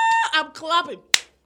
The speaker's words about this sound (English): I'm clapping.